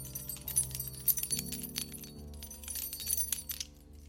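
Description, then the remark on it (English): Keys jangle and clink together in a steady flurry of bright metallic chinks lasting a few seconds, over a low, steady droning hum, with no voices. “So that was the key pause.”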